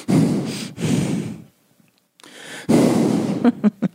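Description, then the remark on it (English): Heavy, noisy breaths over a phone call come in long rasping pulls and exhales, a brief pause, then more strained breathing ending in a few short, sharp puffs. No words are spoken. “We got to pay attention to when the heavy breathing begins.”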